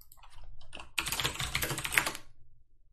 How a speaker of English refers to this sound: Sorry about that. I know my keyboard is quite clackety.